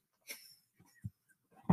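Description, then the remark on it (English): A dog gnaws on his chew: a few irregular, soft crunches and thumps separated by quiet gaps, with no one speaking. “So sorry, the dog is making a lot of noise with his chew.”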